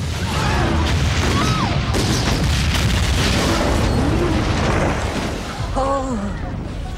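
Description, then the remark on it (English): A ship is blown up in a film scene where they confront Cornwallis: a loud, sustained roar of booming, rumbling noise fills the scene for several seconds, with faint shouting voices rising briefly through the din. “First one is the ship that gets blown up when they confront Cornwallis, and yeah, that woman goes, "Oh, fireworks, lovely."”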